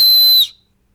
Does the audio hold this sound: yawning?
no